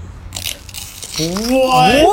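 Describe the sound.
A plastic bottle with two layers of plastic is struck on its bottom, giving a short crinkly, crunching rattle, then a voice rises in pitch over it.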